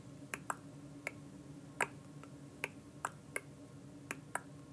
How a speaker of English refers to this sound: So now think in other environments that now you have drips combined together, different rhythms.